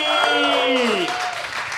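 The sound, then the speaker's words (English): A steady burst of applause with many hands clapping at once, joined by a voice letting out a loud whoop that slides downward in pitch before the clapping carries on. “Let's first off give a big round of applause for our missing and heroic writer of today's episode, Shane Hosey.”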